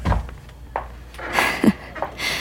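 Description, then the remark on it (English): A door swings shut with a low thud, followed by a few softer knocks, clicks and rustling movements. No one speaks. “Your lips are on mine as soon as the door is closed.”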